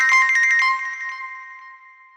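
A short electronic ringtone plays alone: a quick burst of bright, pulsing tones that settles into a steady ringing note and gradually fades out.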